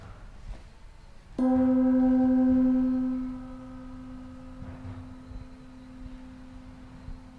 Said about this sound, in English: So, can everybody sit comfortable, like crisscross applesauce, not crossing arms, or just relax and raise your hands, close your eyes, touch the ground when the sound of the gong disappears.